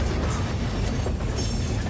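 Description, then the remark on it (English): An underground train rumbles past with a steady, loud, low roar and faint rattling on the tracks, continuous for the whole moment, with no voices. “I wanted to put the whole train here.”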